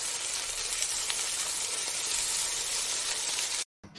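Steady, crackling sizzle of food frying in a hot pan, loud, continuing without pause for several seconds before a brief cutoff near the end.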